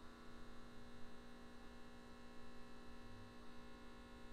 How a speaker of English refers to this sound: What was that? Is that the fridge? It's mad. I don't know if they can hear it online.